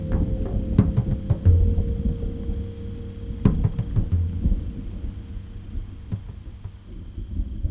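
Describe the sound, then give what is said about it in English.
A thunderstorm with deep, rolling thunder rumbling continuously and rain pattering steadily, punctuated by sharp cracks and drips, with no voices. “was trying to get some rest by the side of the road when a thunderstorm rolled in.”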